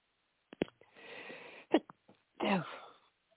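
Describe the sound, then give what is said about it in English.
A sneeze sequence: a couple of sharp, stifled bursts with breathy huffs between them, ending in one fuller, louder sneeze, with no talking. “Bless you, whoever that was.”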